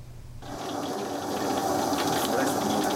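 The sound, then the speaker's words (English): Loud, steady sizzling of chicken in a special curried batter frying in a hot pan, a dense crackling hiss that starts abruptly and holds throughout, with faint voices in the background. “Chicken in a special curried batter sizzles furiously.”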